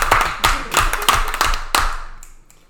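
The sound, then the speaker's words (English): A short run of hand claps, about six sharp, evenly spaced claps from what sounds like one or two people, fading off at the end with no talking. “Round of applause.”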